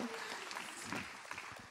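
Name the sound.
audience applauding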